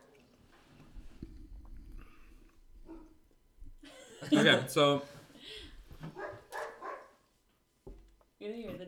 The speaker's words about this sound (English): You hear the dog in the background. Yeah, you're hearing a dog in the background. She's Maggie. Very restless. Her name is Maggie.